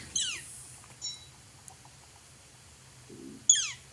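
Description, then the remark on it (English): Northern flicker calls: two sharp, high, descending squeals, one at the start and another a few seconds later, with faint chips between them over a low steady background hum. “And we're going to try to get some of the calls of the flicker.”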